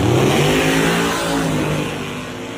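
A Coyote V8 engine in a Ford F-150 4x4 truck revs loudly, a deep throaty roar with strong low harmonics that holds steady and then eases off slightly toward the end.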